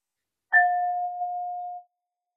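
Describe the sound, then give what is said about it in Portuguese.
A single clear strike of a meditation bell, rung once at the start of a meditation, its pure tone ringing on steadily for over a second before fading out, with no voices around it. “Eu vou tocar o sino agora, uma vez, e ao terminar, três vezes.”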